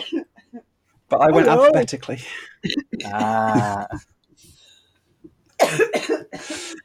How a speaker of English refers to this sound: … is here. She's just coughing at the moment.